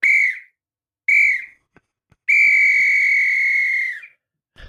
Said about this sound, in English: That must be rugby music or rugby whistles music. It's my rugby start and finish whistle, yeah.